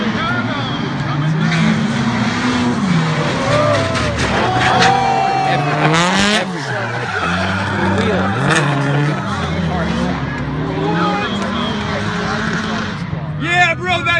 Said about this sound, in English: the drift initiation causes his entire car to fall apart. I've never seen anything like this before.